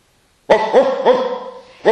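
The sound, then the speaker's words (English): A dog barks several times in quick succession after a moment of silence: short, harmonic woofs, fairly loud, with a brief pause before the last bark. “So, what is it about, you know, the stars in the sky, the dogs barking?”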